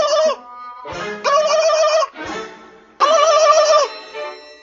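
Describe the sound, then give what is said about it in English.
A turkey gobbles loudly in several rapid, warbling bursts separated by short pauses, with no one talking. “It was Ben Franklin who was in love with the turkey for some reason.”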